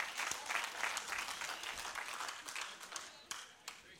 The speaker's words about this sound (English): Let's applaud the Lord.